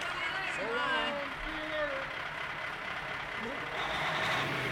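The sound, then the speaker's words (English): A bus engine rumbles steadily as the vehicle drives off, its noise filling the scene while voices call out faintly over it. “Love that bus.”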